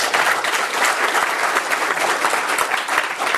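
A crowd applauds steadily, many hands clapping in a dense, continuous patter that stays loud and even for a few seconds with no voices standing out.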